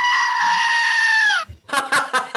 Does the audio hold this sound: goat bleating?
yes